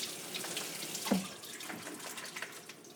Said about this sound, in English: Okay, noodles are done. I'm going to take those off the heat immediately, drain. Rinse with cold water. Make sure these start cooling down here.